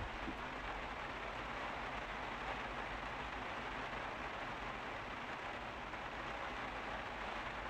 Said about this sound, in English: I'm just listening to the rain, bro.